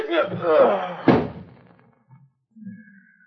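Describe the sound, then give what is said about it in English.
In a pool hall, a voice shouts or strains briefly, then a single heavy fist punch lands on a man's mouth with a sharp thud that fades quickly, followed by faint shuffling movement. “There was a slight cut on the side of his mouth where my fist had connected.”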